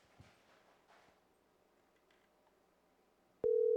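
Soft background noise with faint clatter, then a loud, steady electronic telephone ring tone cuts in abruptly near the end and holds, like the line ringing on an outgoing call.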